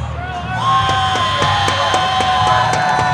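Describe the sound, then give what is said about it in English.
A loud crowd cheers and yells nonstop, a dense roar with sustained high whistling tones rising over it and rapid rhythmic claps or stomps beating underneath throughout, at the U.S. Naval Academy as midshipmen become surface warfare officers. “You would think that the crowd would die down a little bit, but it's just not happening, right?”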